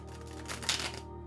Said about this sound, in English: I'm going to keep shuffling these. These cards are so thick. It's like, whoa, I can hardly move them.